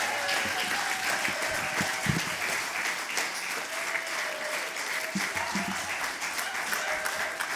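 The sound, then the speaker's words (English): Sustained audience applause for the poets, from Foyle Young to the John Masefield poets: a dense steady wash of many hands clapping at an even loudness for the whole stretch, with no clear individual claps standing out and no talking over it. “Guys, can we give all our amazing poets, from Foyle Young to the John Masefield poets, a big, massive round of applause.”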